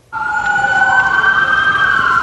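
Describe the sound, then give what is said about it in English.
Emergency vehicle sirens wail continuously in the distance, a steady, fairly loud tonal blare holding for a couple of seconds with no speech, over a low rumble of background noise, during a two-alarm fire on West Broadway near Manitoba late on an October evening. “This time, there's no wondering why there are sirens in the distance.”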